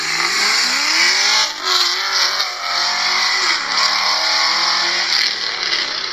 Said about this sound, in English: Here's pass number one on the Camaro.